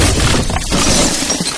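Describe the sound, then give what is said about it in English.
A loud crash as a large mechanized foot smashes through a store, with a dense burst of shattering and breaking debris that rumbles on for over a second, no voices. “Unfortunately, Brian Fuck's large mechanized foot smashes it, just Terry Gilliam style, right in front of you.”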